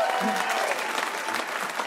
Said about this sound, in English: Let's give them a round of applause right now.